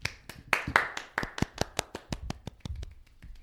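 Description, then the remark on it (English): Applause from what sounds like a single pair of hands: about twenty sharp, crisp claps in a steady, fairly quick rhythm, fading slightly toward the end, with no talking. “Round of applause.”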